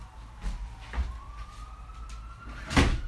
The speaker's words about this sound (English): You're probably going to hear some sirens in the background. Nothing I can do about that. Hold on.